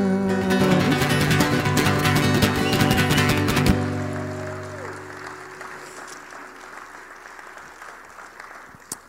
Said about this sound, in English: I gotta tell you, I heard the same thing. People clapping and cheering and whistling.